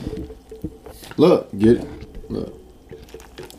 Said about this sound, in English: Oh, you gotta pour some more beer in there. I'm not pouring no more beer in there.